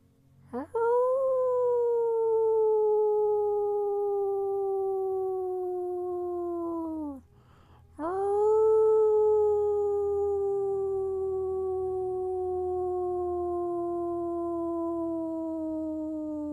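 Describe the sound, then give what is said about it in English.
Two long, loud howls by human voices imitating wolves, each held for several seconds and sliding slowly downward in pitch, separated by a short breath-like pause. “And you let out your howl as well”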